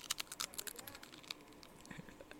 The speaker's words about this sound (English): Now you will be listening to us to be eating Dorito chips very loudly into the microphone.